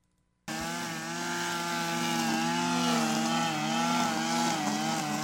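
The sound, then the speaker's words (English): A weed whacker's small engine starts abruptly outdoors and keeps running loud and steady, a buzzing, harmonic drone whose pitch wavers slightly as the throttle shifts, with no voices over it. “think the person running the weed whacker, you know, they got ear protection on.”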